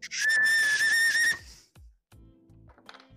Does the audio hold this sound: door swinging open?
no